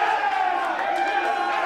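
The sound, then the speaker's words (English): A large crowd cheers and roars in a steady, dense wash of mingled voices, loud and sustained for under two seconds without a clear break. “Nothing to cheer about,”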